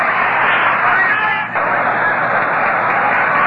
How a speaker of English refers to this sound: Well, here he comes. Stan the man, Muccio, is going to bat for Juan Marichal. And there's the roar from the crowd before Muccio is even introduced.